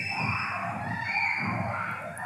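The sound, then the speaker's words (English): A crowd of people on a roller coaster screaming together in one sustained, loud burst, with a steady wash of noise behind the voices. “Sound like these are jots of the roller coaster. No, this is the first time I've ever heard man screaming from there, bruv.”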